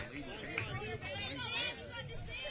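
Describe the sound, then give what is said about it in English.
Steady crowd chatter at a softball game, many overlapping voices blending into a continuous murmur of moderate loudness with no single voice standing out. “Nice crowd here today for this softball matchup.”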